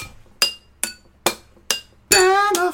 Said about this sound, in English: Glasses shatters. That was good tone.